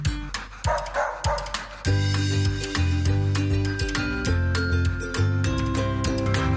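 A dog barks and yips in quick, loud bursts; after a couple of seconds a sustained musical backing comes in while sharp barks keep punctuating it.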